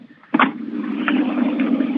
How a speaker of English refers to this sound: Sorry about that. A little bit of a helicopter taking off here.